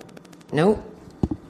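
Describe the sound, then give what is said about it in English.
A quick, steady run of faint clicks ticks along, briefly broken by a short vocal sound, followed by two sharper, louder clicks close together. “Oh, what is that clicking sound?”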